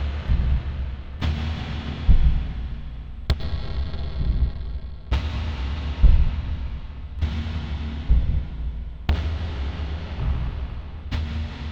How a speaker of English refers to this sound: I didn't get a drummer, oddly deciding that I wanted some kind of colossal, glacial, crashing sound made by treating the sound of drums I would play myself.